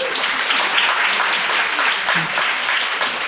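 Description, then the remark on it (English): An audience claps to show they feel tired a lot, a dense, steady patter of applause that stays loud throughout with a faint murmur of voices beneath it. “Yeah, we're preaching to the choir a little bit, but we definitely got more clapping on the kind of crisis type.”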